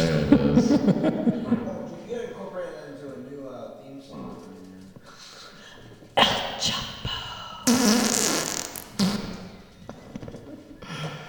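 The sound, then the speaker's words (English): A run of sampled fart noises, pitched and chopped into a rough rhythmic pattern, with a couple of louder raspy bursts near the end and some chuckling voices mixed in. “Everybody has GarageBand, and you can fart in there, and you can sample it, and just be like.”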